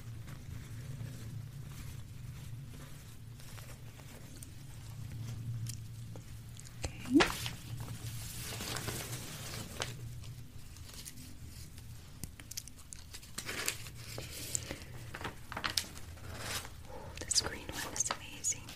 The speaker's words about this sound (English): Be interested in exploring more of paper sounds. I love this little floaty sound.